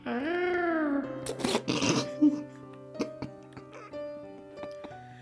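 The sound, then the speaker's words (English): A voice imitates the blood-curdling growl of a half-human, half-dog-like creature: a loud, strained, wavering cry lasting about a second, then a couple of rough, raspy bursts, followed by scattered faint clicks and quiet sounds. “I want to hear that blood-curdling growl.”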